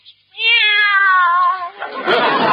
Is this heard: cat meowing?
yes